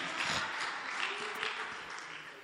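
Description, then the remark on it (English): An audience claps in a dense, steady wash of applause that holds at an even level for a couple of seconds, then eases slightly toward the end. No one speaks over it. “Thank you for clapping in French.”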